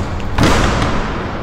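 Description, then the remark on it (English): A heavy knock on the large wooden doors of the Citadel: one loud, booming thud followed by a fainter second blow, with a deep resonant tail and no voices. “Behold, before us lie the doors to the Citadel. Indeed they do, Mr. C. Creditable feat, given we are to bring your prey with us. I will knock.”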